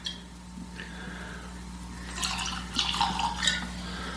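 Eagle Rare whiskey is poured into a tasting glass that is wider at the bottom: after a quiet moment with a low steady hum, a burst of bright splashing and gurgling glugs runs for about a second and a half, then trails off.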